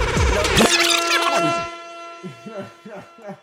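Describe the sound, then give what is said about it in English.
Loud hip-hop music with thumping bass and layered sound plays for over a second, then cuts off, leaving a voice speaking briefly and more quietly. “That's some city boy music.”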